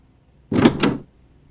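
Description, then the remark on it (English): Black double doors swing open in a short, whooshing burst about half a second long, with two quick surges close together, heard alone against a quiet background. “The Siren leads me and Nyx through a set of black double doors into a room with a giant pool”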